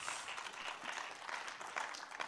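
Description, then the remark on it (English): An audience applauds the Lord as the offering is picked up, a dense, steady wash of many hands clapping that holds evenly throughout without any voices, heard at moderate level. “Applaud the Lord before we get into the message.”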